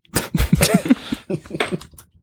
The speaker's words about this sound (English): Excuse me. Had to cough there.